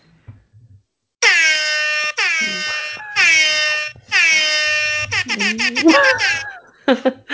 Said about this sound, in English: Wow. Wow. I do feel like that deserves an air horn.